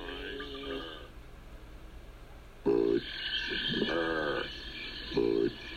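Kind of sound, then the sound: animal, frogs croaking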